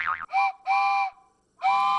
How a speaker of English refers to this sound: I was just playing with my train whistle.